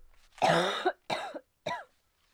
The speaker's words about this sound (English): I'm so sorry about the coughing, y'all.